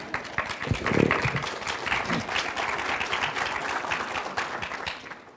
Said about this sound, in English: Can we give our readers a round of applause?